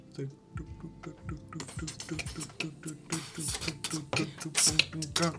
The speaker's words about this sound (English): If there's a slight weird sound in the background, it's because, well, the dishwasher's going. Wait, see?